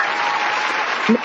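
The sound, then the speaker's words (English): Steady, dense applause from an audience welcoming a special guest to the show, many hands clapping continuously at an even loudness, with a brief voiced sound rising over it near the end. “So please help me welcome him and give him a round of applause.”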